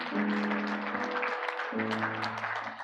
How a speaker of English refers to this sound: Let's give these people a hand clap today, church.